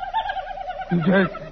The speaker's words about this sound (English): It's a turkey. A big gobbler.